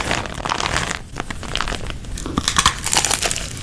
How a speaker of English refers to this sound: What is she eating? She was pouring candy out of a bottle.